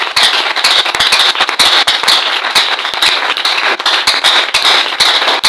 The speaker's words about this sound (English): I thought you put your hands for the Lord. This is your clapping. You want to see?